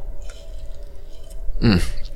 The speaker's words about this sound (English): Oh, never hurts to drink water when you're talking for this long.